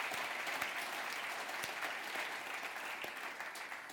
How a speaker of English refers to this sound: Can we just give Phil another round of applause?